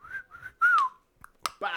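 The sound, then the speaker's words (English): A person whistles three short notes as a signal guiding an archer who shoots a bow without looking, the last note louder and sliding downward, followed by a couple of sharp clicks and a brief rush of noise at the end. “Also, another thing I liked was Miranda's bow and archery without looking and relying solely on the whistles from ….”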